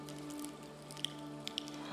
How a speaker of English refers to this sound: If you want to go ahead and open up the bottom half of your little cup there.